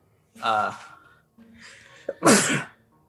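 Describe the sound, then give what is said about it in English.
A loud sneeze: a voiced, gasping build-up, a short pause with a quieter breath, then one sharp explosive burst that quickly fades. “Bless you. Thank you.”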